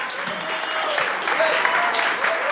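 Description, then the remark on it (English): An audience applauds steadily to welcome a bishop in the afternoon, dense overlapping claps forming a loud, continuous wash of noise with a faint murmur of voices underneath. “Keep clapping.”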